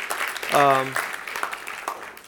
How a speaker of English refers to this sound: Yeah, you could clap.